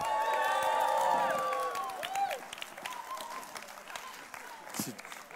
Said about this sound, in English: Give him a huge hand clap.